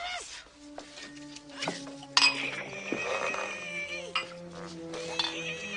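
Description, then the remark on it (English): A double bourbon being poured into a glass: bright glassy clinks and ringing tones over a steady liquid trickle, with a sharper clink partway through. “Just pour the drink, Dolores.”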